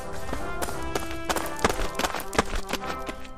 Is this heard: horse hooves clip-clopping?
yes